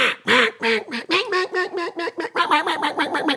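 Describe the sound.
A duck call blown loud by a duck caller, pouring out a rapid, uneven string of about a dozen raspy quacks that mimic several ducks calling at once, with no talking.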